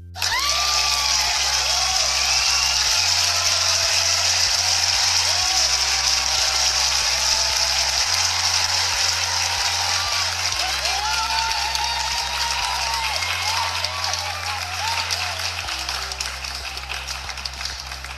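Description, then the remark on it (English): A dense wash of crowd applause and cheering, given for Fat Daddies, carries on loudly for the whole stretch, layered over a steady, pulsing bass beat. No one speaks. “Y'all give a round of applause for Fat Daddies out there.”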